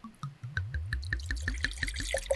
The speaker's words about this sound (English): there is a different sound to pouring a sparkling to start the show than to pour something